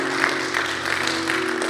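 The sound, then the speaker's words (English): A church audience applauds the Lord together at a morning service, a dense, steady wash of many hands clapping at once, sustained and fairly loud throughout with a faint organ-like hum underneath. “Come on, give the Lord a hand clap this morning.”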